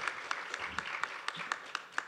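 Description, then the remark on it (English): Audience applause: a steady wash of many hands clapping, with sharper, evenly spaced claps standing out about four times a second. It is moderately loud, with no voices. “So, Keith, yeah, applause.”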